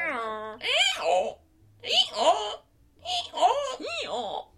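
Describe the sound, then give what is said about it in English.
A person imitates a donkey's bray, producing three loud, strained vocal bursts with wavering, rising and falling pitch, separated by brief pauses. “I feel like that was a pretty good donkey.”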